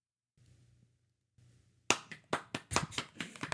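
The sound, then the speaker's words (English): After a faint low hum, applause suddenly breaks out: a loud, irregular run of sharp hand claps that keeps going without any voices. “Out in the street, Isaiah just hears applause.”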